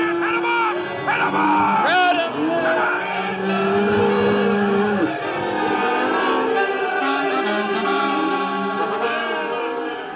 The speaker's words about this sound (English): Stampede. 10,000 head of cattle gone loco. Like an avalanche bearing down on you, pounding everything to dust that tries to stand before it. Horses, wagons, men, everything.